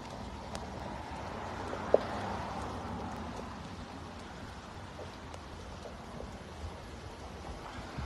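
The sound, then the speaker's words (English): Steady rain falls outside the Lethbridge Courthouse as a soft, even hiss, with scattered small ticks and one sharper knock early on. The sound is fairly quiet, and no one speaks. “And you'll notice that there's not many people sitting out in the courthouse because it's raining.”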